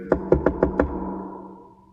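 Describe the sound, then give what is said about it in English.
Five quick knocks rap on a wooden front door at home in a steady rhythm, fairly loud, made by two FedEx delivery workers, followed by a fading resonant hum. No voices. “You go to the front door, you open it, and there you find two FedEx workers.”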